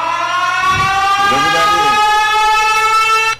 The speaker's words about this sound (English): Drum roll, please. We have a drum roll air horn.